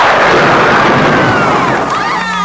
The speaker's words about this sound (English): Stand and fight, or run. Use your lightning bolt.